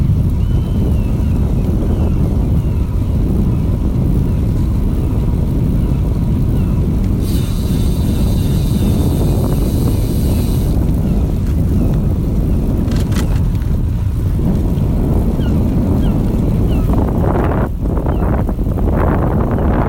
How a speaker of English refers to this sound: Perhaps the most northerly Slow Radio clip you've received to date. And this is fantastic. This is exactly what Slow Radio should be about. Here we are being transported to minus 30 degrees alongside the banks of the Yukon River.